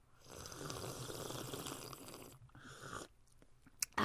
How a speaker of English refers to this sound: You need some more practice slurping your tea. Siphoning it through your mouth.